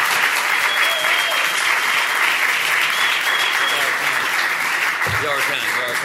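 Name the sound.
audience clapping and applauding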